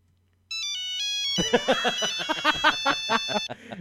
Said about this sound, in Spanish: Escuchen cómo suena mi teléfono